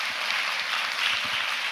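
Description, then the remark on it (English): A church audience applauding the announcement that the church has no debt, a dense, steady wash of many hands clapping at once, holding an even loudness throughout the short stretch with no voices over it. “Just so you know, the more you clap, the longer I'll be up here.”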